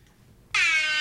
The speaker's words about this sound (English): We are going to sound the air horn.